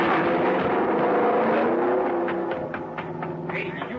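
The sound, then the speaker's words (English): A car engine roars loudly and steadily as Van Hook drives it out of his garage, then a few sharp cracks and clattering bursts break through near the end as the car smashes through the garage door. “He drove right through the door of his garage.”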